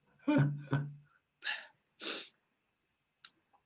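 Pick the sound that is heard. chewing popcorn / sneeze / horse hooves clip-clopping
sneeze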